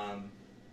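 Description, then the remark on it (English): A single short cat meow, soft, fading quickly into quiet with no talking. “The cat just said it'd be better if Vader was in the episode.”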